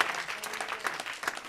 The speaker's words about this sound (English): Please give God a hand clap of praise. Amen.